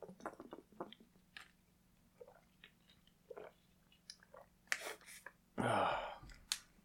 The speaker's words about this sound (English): Let me drink some water real quick.